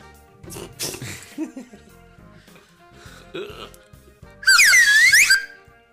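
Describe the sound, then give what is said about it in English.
A cheap slide whistle blares loudly for about a second, its breathy, airy pitch swooping down and back up, after a stretch of muffled vocal noises and shuffling. “No, it's a cheap, shitty slide whistle.”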